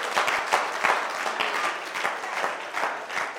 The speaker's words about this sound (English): Clap for the women. Yeah. Clap for the women in this church.